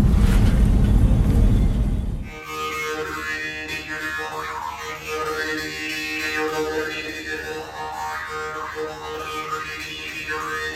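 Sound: car driving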